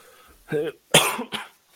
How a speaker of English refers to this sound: Yeah, I gotta get over this cough.